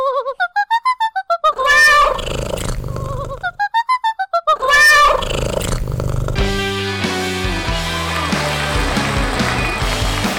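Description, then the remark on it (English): A pet cat named Katey Purry vocalizes in two loud bursts of rapid, wavering meow-like cries, each rising and falling in pitch, before a band's music swells in and continues to the end. “Cat Katey Purry sings.”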